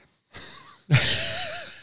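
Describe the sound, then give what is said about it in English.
Two breathy sniffs over a Jello shot glass of 100-proof liquor, a shorter soft one followed after a brief pause by a longer, louder, airy inhale. No one speaks. “All right, sniff. Mouth open.”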